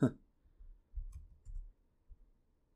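Quiet, soft clicks and muffled taps come in a few irregular bursts, faint, as someone types on a keyboard, with no one talking.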